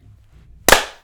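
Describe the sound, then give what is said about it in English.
A single sharp hand clap, made to sync a recording, cracks out after a near-silent stretch, bright and percussive, with a brief ringing tail that fades within a few tenths of a second. “All right, and let's clap in”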